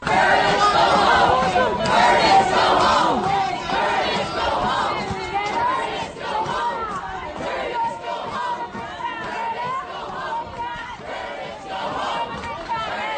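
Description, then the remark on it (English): A large crowd of about 100 socialists of America yells together in unison at the top of their lungs in a loud, sustained chorus of shouting voices, rising and falling in overlapping waves with no pauses for the full length. “I heard the sounds as they saw my red beret protruding up the steps, and they were screaming at the top of their lungs.”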